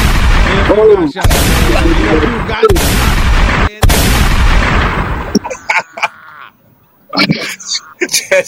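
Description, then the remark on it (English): Four heavy, booming gunshot sound effects fire back to back, each ringing out loudly before the next, followed by a few seconds of quieter scattered clicks and muffled voices. “Just got a little gunshot.”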